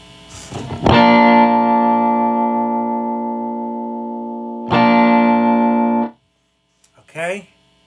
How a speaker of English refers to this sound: Almost like a flanger. So you can hear though that it is real useful.